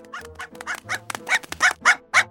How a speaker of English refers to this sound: Oh, that is one angry little dog. Calm down there, buddy. Don't get near it. These chihuahuas are deadlier than shark-infested water.